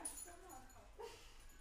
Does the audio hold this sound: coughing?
no